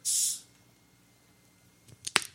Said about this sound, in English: have our resident ginger open up the Sprite Ginger